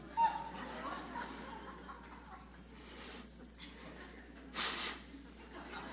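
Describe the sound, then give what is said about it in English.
Heavy breathing through the nose, a few slow, noisy breaths ending with one sharp, loud snort-like exhale. A person seems to be deliberately imitating the sound. “I'm breathing through my nose.”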